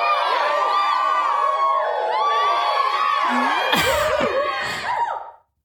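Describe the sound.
A few voices mimic a roaring, cheering crowd with loud, sustained high-pitched screams, whoops and 'woo' cries, building to a burst of shrieks before cutting off abruptly.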